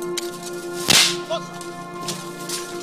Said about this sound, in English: As we crossed an alley with a clear line of sight to Israeli positions by the separation barrier, a gunshot from their direction struck the ground between us.